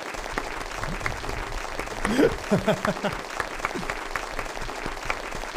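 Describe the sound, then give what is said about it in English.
Dense, steady applause from a crowd fills the whole stretch, with a few voices briefly calling out over the clapping midway through, then the whole audience stops at once and the applause cuts off abruptly. “I love the way that applause just cuts.”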